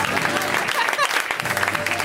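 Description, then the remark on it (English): Steady, dense applause from an audience fills the whole stretch, with a brief rising whistle near the middle and scattered voices mixed into the clapping. “Keep it going, Ferrari.”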